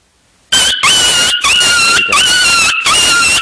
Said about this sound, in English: The dog getting hurt was squealing. Supposed to be a dog barking. Was it dog barking? Again? Yeah, that motherfucker's getting his ass whooped.